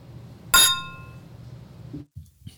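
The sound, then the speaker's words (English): Two cups of blended ginger and garlic flu fighting soup clink together once in a toast, a bright knock with a short ringing tail that fades within a second. Quiet murmuring underneath, followed by a couple of soft bumps. “Well, bottoms up. Cheers.”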